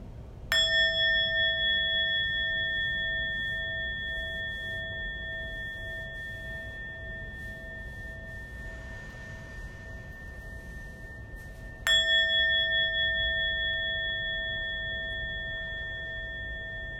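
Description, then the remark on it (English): A meditation bell is struck twice, about eleven seconds apart, each strike ringing out clearly with bright sustained tones that slowly fade over a soft background hush. “Listening to the sound of the bell.”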